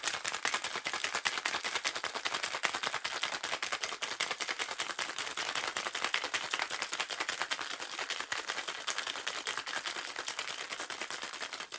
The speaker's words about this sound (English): Shake it well. Shake it for about 15 to 20 seconds. You want the shaker to get cold. You want to froth the milk.